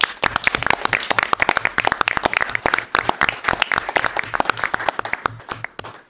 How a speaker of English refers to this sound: And those are the new staff, so maybe we can give them a round of applause.